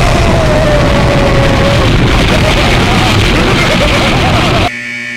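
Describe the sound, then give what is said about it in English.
A loud, roaring explosion sound effect rumbles continuously for several seconds, dense and noisy with a faint falling whine at the start, then cuts off abruptly. “Boom, so let's talk about it. Number one, Radiant Silvergun. Explosion.”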